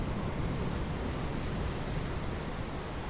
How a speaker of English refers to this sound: So from that white noise, it slowly starts to settle. At some point, Zolf realizes it's settling into the sounds of waves on a beach.